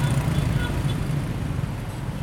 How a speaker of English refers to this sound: It's 4 p.m. Thursday afternoon in Timor-Leste's capital of Dili. The streets are busy with cars and motorbikes trying to beat the impending afternoon rain.